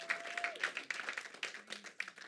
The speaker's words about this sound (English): Clap your hands one more time and give God praise.